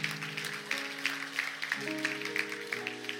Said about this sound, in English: Come on, let's give the Lord a clap offering.